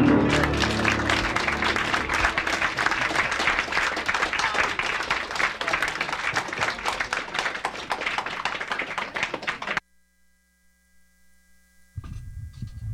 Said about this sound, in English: Wait, what happened to that clapping? Wait a minute. Oh, there's some more clapping. That's good.